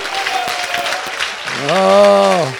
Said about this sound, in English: Now give them a praise and a shout and a clap offering.